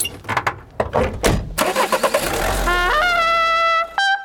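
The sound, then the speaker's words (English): A few sharp clunks, then a car engine cranks and catches, revving upward in rising pitch before holding a steady whine and dipping briefly near the end. Fairly loud. “You kids get in the fucking car.”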